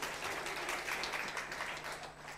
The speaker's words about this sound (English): Well, a round of applause. Very, very good.